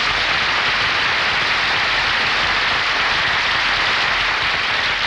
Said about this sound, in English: Why did you give just him applause?